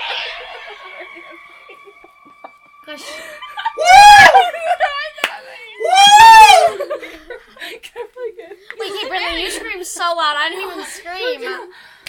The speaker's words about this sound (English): You scream so loud. I didn't even scream. No, you're done. You scream.